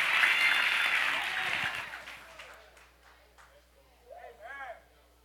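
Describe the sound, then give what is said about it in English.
An audience claps in a dense, loud burst of applause that tapers off over a couple of seconds, then a single voice begins speaking as it quiets. “Clap y'all hands, please. Just clap.”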